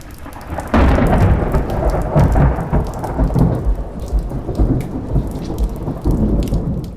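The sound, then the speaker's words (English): A thunderstorm rumbles in with a sudden deep thunderclap about a second in, followed by rolling thunder over steady, hissing rain. The loud storm continues without letup and no voices are heard. “The ship's captain recommends delaying the mission because a massive storm is moving quickly in their direction”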